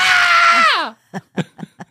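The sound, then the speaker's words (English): A voice acts out a terrified scream: a loud, shrill, sustained shriek lasting about a second that sags in pitch at the end, followed by four short, breathy vocal bursts. “I took screaming to a whole nother level.”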